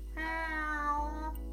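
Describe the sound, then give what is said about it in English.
A single drawn-out meow from a headquarters cat, clear, lasting just over a second with a slight rise and fall in pitch, heard on its own with no talking. “keep our headquarters cat fed.”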